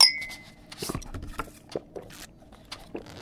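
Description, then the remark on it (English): A single bright clink of glasses in a toast rings out at the very start, followed by scattered soft knocks, shuffles and faint murmurs. “Do you want a drink?”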